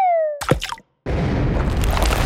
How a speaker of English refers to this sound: We hear the sound of a human head landing in a ravine.